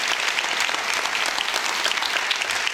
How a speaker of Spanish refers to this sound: ¿Por qué no le damos un fuerte aplauso a nuestro Dios? Él es bueno.